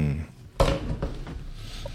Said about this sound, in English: Let me close this door for the sound.